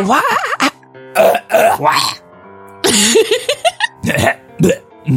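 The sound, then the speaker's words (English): A loud coughing fit used as the beginning of a song: harsh, uneven bursts of coughs and throat-clearing, mixed with strained vocal grunts, coming in irregular clusters with brief pauses between. “They just took his coughing fit and made that the beginning of the song.”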